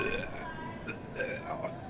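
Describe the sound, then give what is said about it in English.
A long, gurgling Jäger burp rumbles up for a couple of seconds, its croaky pitch wobbling up and down with a voice-like tone. “It's Jaeger burps.”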